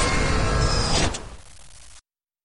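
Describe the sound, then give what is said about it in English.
A door slides open with a loud mechanical rush, ending in a brief clunk before the sound fades out quickly. No one speaks. “Who is it? Open the door. Just open the door.”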